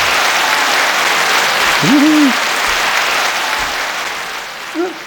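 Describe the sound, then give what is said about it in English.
A large crowd of fans in a big auditorium claps in a steady, dense roar of applause, with a couple of short whooping cheers rising above it, one near the middle and another near the end. “Yeah, we're just so glad to be back in this great big auditorium filled full of people cheering fans.”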